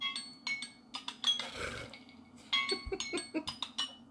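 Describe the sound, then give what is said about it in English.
An alarm clock ringing with a rapid series of bright, chiming tones in short repeated bursts, briefly interrupted by a rustling noise, with no one speaking. “Okay, this is what my alarm clock sounds like.”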